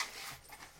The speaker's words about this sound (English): But I have a case down here just from my shell gig on the weekend. So let me just unzip it.